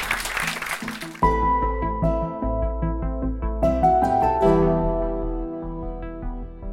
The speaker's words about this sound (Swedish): Jag tycker du har gjort ett jättefint framträdande här ikväll. En stor applåd för Hans-Gunnar Axberger.